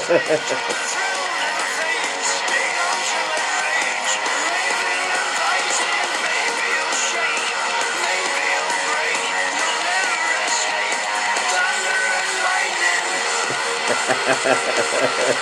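A heavy metal rock song blasts throughout, a dense wall of distorted guitars and pounding drums at a steady, driving tempo, loud and relentless with no pauses.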